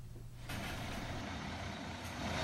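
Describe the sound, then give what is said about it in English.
A large tour bus engine idles with a deep rumble as three large tour buses pull up at a quarantine station on Yangmingshan in the early morning, then a loud, sustained hiss of air brakes bursts in and carries on over the engine noise. “In the early morning hours of Friday, 3 large tour buses pulled up at this quarantine station on Yangmingshan.”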